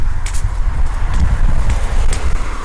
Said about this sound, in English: Hopefully the wind does not make too much background noise, as it's very windy today.